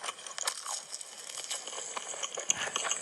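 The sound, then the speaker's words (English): A girl chews a rice noodle: a steady stream of wet, crackly, squelchy mouth noises and small crunches, fairly quiet and continuous, with no voices. “But it's a tiny Asian eating girl. Eating a rice noodle.”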